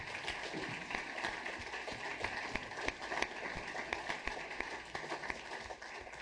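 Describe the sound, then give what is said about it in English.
Steady applause from an audience for a panel of speakers, a dense patter of many hands clapping at once, holding evenly for several seconds with no voices standing out. “And let's give our panelists another round of applause.”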